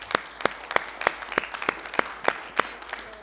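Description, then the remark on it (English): A church audience claps in praise of the Lord in steady unison, about eleven sharp, evenly spaced claps over roughly three seconds, riding on a softer wash of scattered applause. No one speaks. “Let's give the Lord another hand clap of praise, please.”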